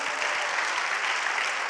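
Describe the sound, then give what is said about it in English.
A church audience claps their hands together, a dense, steady wash of many overlapping claps with no clear rhythm, filling the whole moment at an even loudness. “Come on, clap your hands, church, if you personally have received the gift of the Holy Ghost.”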